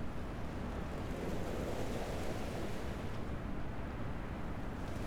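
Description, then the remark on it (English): Ocean waves wash against the shore beside a tall cliffside in a steady, continuous roar, with a deep rumbling rush underneath and a faint hiss on top. No single breaks stand out, and nobody speaks. “The tall cliffside to my left blocks the end of my path, but I can still stand and watch the deep ocean waters by the shore and get a sense of the great vastness that expands beyond the cliff.”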